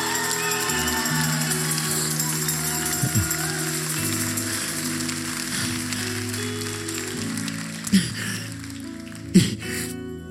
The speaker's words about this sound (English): Can you give the Lord a shout and a hand clap?